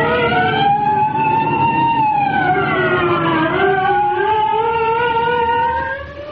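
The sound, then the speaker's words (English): State trooper police sirens wail continuously with a rising and falling pitch as the troopers arrive, loud and steady throughout before tapering slightly at the end, with an engine rumble underneath and no talking. “Here come the state troopers.”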